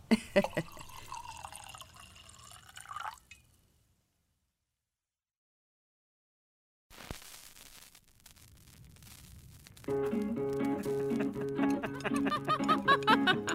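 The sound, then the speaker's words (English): Wine is poured into a glass in a short, steady trickling stream lasting a few seconds, after a brief silence, with a tonal, music-like passage following. “Looky there, your wine glass is empty already. Let me fix that for you.”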